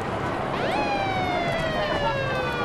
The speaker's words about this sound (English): A truck full of sheriffs and riot gear pulling up at the intersection. They look like they're headed into battle.